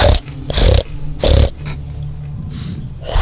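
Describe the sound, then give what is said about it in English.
Loud, rasping breaths come in a slow rhythm, about four heavy inhales and exhales with a snorting edge, over a low steady hum and no talking. “The Abominable Snowman casts the spell, so you also hear the sounds of heavy breathing through the halls.”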